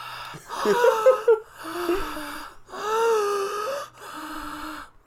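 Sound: imitated heavy breathing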